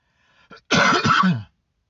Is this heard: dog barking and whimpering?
no